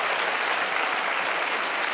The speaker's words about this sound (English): Let's give the Lord a good hand clap, everybody. Praise God.